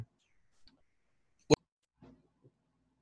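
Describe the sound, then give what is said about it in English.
A single short, sharp cough bursts out of near silence, followed a moment later by a couple of faint, low throat sounds. “No, I was just coughing.”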